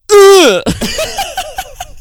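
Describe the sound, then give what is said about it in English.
A voice imitates the way a man talks, grunting and burping: one loud, strained groan sliding downward in pitch, then a quick run of short, croaky guttural bursts. “He just like grunts and burps and boils like every sentence that he says.”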